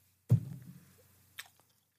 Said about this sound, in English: She's eating ice. What made you feel like you needed a piece of ice right now?